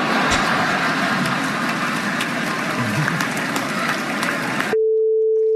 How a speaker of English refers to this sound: It still hurts. I got summertime ringing in my ear.